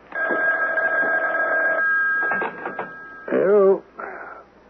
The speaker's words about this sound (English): aren't you going to answer the phone?